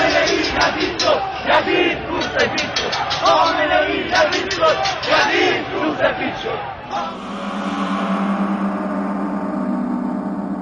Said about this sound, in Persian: جمعیت عصبانی شعارهای تند می‌دهد و با سنگ و هر چه که بشود پرتاب کرد تلاش می‌کند تا از میان نیروهای ضد شورش راهی برای عبور به خیابان‌های اصلی شهر باز کند.